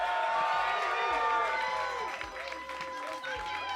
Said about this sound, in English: We all feel pretty good. You wanna give them all a round of applause as they get ready for this?